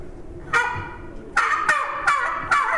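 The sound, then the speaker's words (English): A hand-blown gobble call imitates a young male turkey's (jake's) gobble: a short burst followed by three quicker rattling gobbles, loud with no talking. “And I use a gobble call quite a bit louder than what we're blowing right here.”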